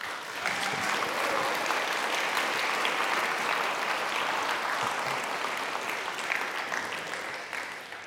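An audience applauds steadily, a dense wash of many hands clapping at even loudness for about eight seconds before tapering slightly at the end.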